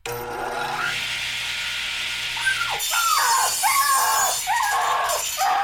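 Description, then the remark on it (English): A harsh, steady rasp of sawing fills the first few seconds as a man saws a puppy in half, then gives way to a run of high, sliding yelps and cries layered over continuing grinding noise, all loud. “Oh, Lord, that man just sawed a puppy in half.”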